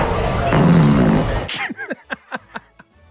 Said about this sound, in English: the person who submitted fart number six. Congratulations to him.